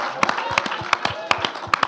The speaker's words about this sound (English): Round of applause!